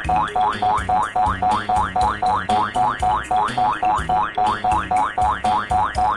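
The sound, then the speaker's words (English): The end-of-level tune from the video game Lemmings plays alone. It is a bouncy electronic tune built from steady, rapid pulses of springy, upward-sliding 'boing'-like notes repeating in an even rhythm for several seconds, ending with a cuckoo sound. “It's that blooming cuckoo at the end.”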